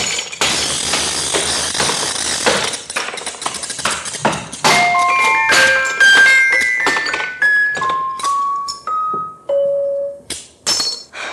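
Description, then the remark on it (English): A hammer smashes a music box in a flurry of loud, sharp blows. Bright metallic plinks and short ringing notes scatter between the hits, and the strikes grow sparser toward the end. “Is this a habit of yours, breaking up music boxes?”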